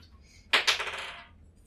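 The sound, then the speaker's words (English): Dice rolled during a tabletop role-playing game, to look around, clatter onto a table: two sharp clicks in quick succession, then a short, bright rattle that fades out within about a second, rolling a 14. No one speaks over it. “So I guess I get to roll something.”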